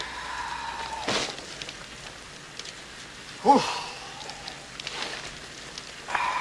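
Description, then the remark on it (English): A campfire crackles with a steady hiss and scattered small snaps, broken by a few sharper pops and one louder burst partway through. No one speaks. “Yeah, that's what I call a campfire.”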